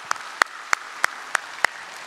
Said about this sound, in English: Amen? Amen. You can clap for that.